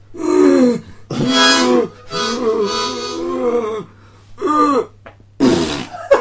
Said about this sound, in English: You actually just farted.